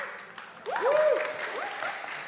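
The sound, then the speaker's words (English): A round of audience applause for a song just performed breaks out after a brief quiet start, a dense, steady patter of many hands clapping, with a few rising and falling whoops or cheers mixed in. “Oh, you've got a good round of applause for that.”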